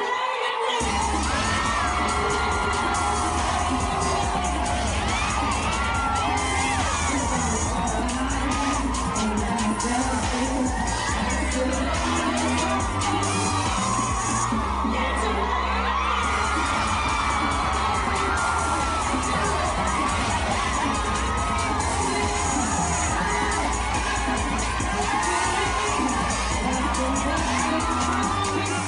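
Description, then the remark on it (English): A packed crowd of women in a room shrieks and cheers with excitement as they watch a man dance and strip, loud and continuous for the whole stretch, with high whoops rising over a dense roar and occasional thumps underneath. “I thought that was a really lovely use of editing, to watch her reactions as we're watching him dance, and also watching the other women in the room scream like banshees with excitement.”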